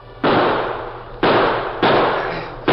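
Four gunshots ring out at uneven intervals, each a loud, sharp crack followed by a long, rumbling decay that fades slowly before the next shot. No one speaks.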